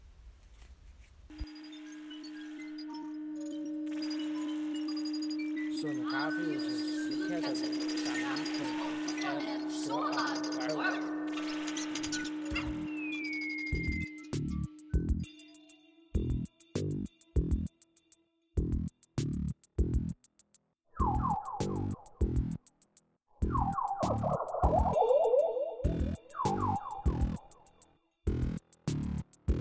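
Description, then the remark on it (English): A theme tune opens with a steady low drone under swelling, layered tones, then turns into a brisk rhythm of sharp plucked notes with short bright melodic flourishes, played alone without any voice. “Vi vil derfor afspille kendingsmelodien endnu en gang, lige for at markere, at vi starter et nyt afsnit.”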